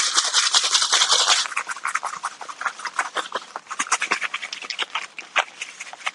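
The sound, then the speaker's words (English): Dense, papery rustling and rattling for over a second as two or three egg-washed chicken pieces are shaken in a bag of breadcrumbs, followed by quieter irregular scuffs and taps. “We do another piece, wash, into the bag, shake it up.”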